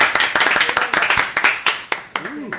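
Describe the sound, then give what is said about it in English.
A small crowd claps in a quick, scattered burst of applause for a woman who volunteered and is coming up. The sharp hand claps are steady, with a faint voice rising briefly near the end. “Give her a round of applause, ladies and gentlemen.”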